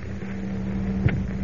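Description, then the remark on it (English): A large wind tunnel fan at an aircraft plant, used for testing new plane models, starts up and drones steadily with a low, even hum and broad whooshing noise. A faint mechanical thump breaks through near the end. No voices are heard. “Professor, that fan is starting up.”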